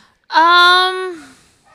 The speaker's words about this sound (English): Why is King barking? It's so loud out upstairs.